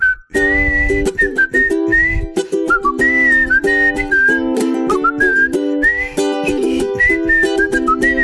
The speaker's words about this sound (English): I did a song. What I did was I recorded a song where I was whistling because it was like if I was doing that song I just played, it'd be like.